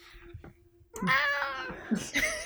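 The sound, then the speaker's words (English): A cat named Daenerys lets out a loud, drawn-out meow, rising and falling in pitch, followed by a shorter second meow, with soft background noise beforehand. She is trying to make her way into the middle of a table. “I'm just getting ready for Daenerys to make more sounds.”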